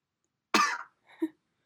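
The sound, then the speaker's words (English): A single sharp cough bursts out, followed a moment later by a softer throat-clearing grunt, with silence around both sounds. “Bit where I coughed.”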